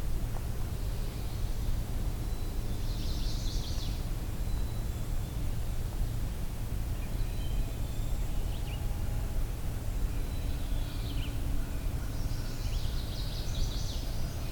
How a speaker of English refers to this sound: You can also hear some distant chickadees.